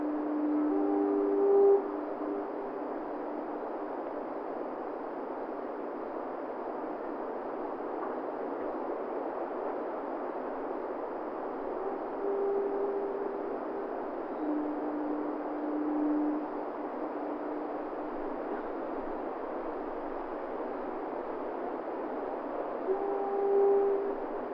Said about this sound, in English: Okay, have this one note playing every 10 seconds, this one every 11 seconds, and repeat it forever. They listened to the foghorns quietly for a few moments.